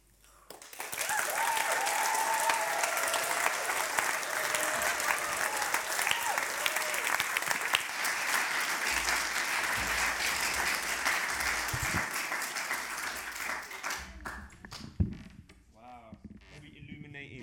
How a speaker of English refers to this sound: Words are like firelight. Amazing, amazing. Can I have another round of applause, please,